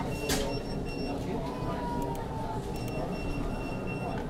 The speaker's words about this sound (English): I wonder how many people are going to walk out of here today with a new car. All right. Just killing time at the Toyota dealership.